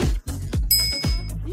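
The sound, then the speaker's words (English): A single bright bell ding rings out in a promo for Old Westbury Web Radio (OWWR), its high metallic tone sustaining for about half a second before cutting off, over a steady, pulsing low-pitched backing beat. “Subscribe to us at OWWR and don't forget to hit that bell.”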